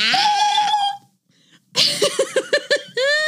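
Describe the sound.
A voice imitates a goat or lamb bleat, starting with a long wavering cry, then after a brief pause a quick series of stuttering bleats ending in another loud drawn-out call.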